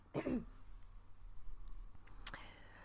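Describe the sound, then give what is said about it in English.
One short, rough throat clear right at the start, then near-silence broken by a faint click toward the end. No one speaks. “So I was waiting for you guys to talk so I could clear my throat.”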